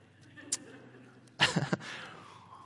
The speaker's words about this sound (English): Sip of water.